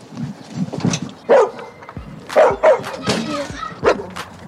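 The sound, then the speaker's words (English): A dog named Ferocious barks several times in short, sharp bursts at an uneven pace, loud, with a low murmur of background noise between the barks. “This is my dog, Ferocious. You know why he got that name if you hear him bark.”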